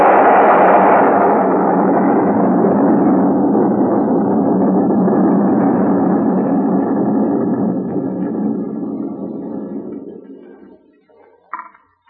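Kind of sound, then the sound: sound effect, building exploding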